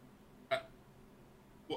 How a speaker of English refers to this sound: I guess someone just put like a gasp sound effect here, or something.